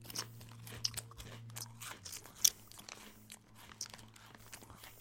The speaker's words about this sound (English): Straight in for the first crunch. Let's get this thing in the mouth.